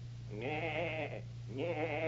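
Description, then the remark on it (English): A man's voice imitates a goat, giving two wavering, quavering bleats in quick succession, the first longer than the second, loud over a steady low hum. “I'll bet you can't make a noise as fine as that. I certainly can.”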